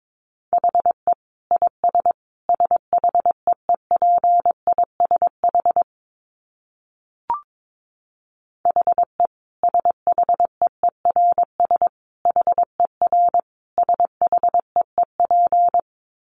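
Morse code sent at a brisk 22 words per minute: a single steady mid-pitched tone keyed into quick dots and dashes, in two long runs split by a short pause with one faint click.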